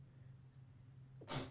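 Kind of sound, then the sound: human body sound, sneeze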